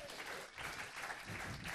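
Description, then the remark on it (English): An audience at a charity show evening supporting Cure Leukemia claps steadily for a guest at the back, a dense, even wash of many hands with no pauses, at a moderate level throughout. “Round of applause.”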